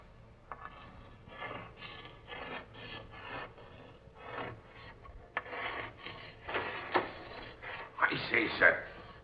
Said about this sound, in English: What be you doing sitting there writing on the captain's slate? Oh, ignoring me, eh? Now look here, you. This is Captain Strong's own cabin, and no one's got any business of sitting here writing.